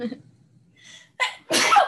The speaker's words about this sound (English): I have to sneeze. Bless you.